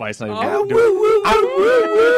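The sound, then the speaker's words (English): A man's voice imitates a wolf howl, a loud, sustained, wavering cry with a rising and falling pitch, close to the microphone and heard alone. “The worst sound effects in the world, watch Nicolas Cage in Season of the Witch, where you hear a guy making a wolf sound, which is...”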